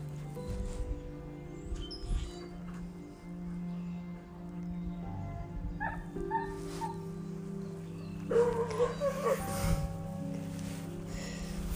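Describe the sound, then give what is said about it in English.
Dogs whimper and whine as Bear greets another dog along a backyard fence line, tails wagging, with high, wavering cries that grow more excited toward the end over a low, steady background hum. “Dogs meeting.”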